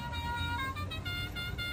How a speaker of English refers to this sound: Well, you've done pretty good, and it's got also a neat little touch that we should share with the viewers. I did add a little Dixie horn to it.